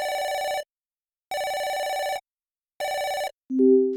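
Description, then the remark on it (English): A phone rings three times during an outgoing call, in steady, evenly spaced, loud bursts with pauses between, then a brief lower tone cuts in as the line connects. “I guess I can kill two birds with one phone call here.”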